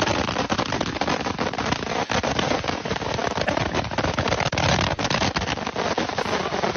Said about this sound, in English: Someone has filled, I think, like an old oil can with a billion fireworks, and it looks like a flamethrower. Wow. That looks like a military-grade anti-aircraft weapon.